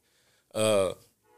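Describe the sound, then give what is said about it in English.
A single loud train horn blast at a train station, steady for under half a second, rising abruptly out of quiet with faint background hum before and after. “So shout out to the train station.”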